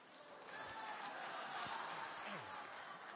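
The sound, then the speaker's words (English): An audience at a church service claps steadily for about three seconds, a dense, even patter of many hands at a constant level, with no clear words spoken. “They clapped in the middle service, too.”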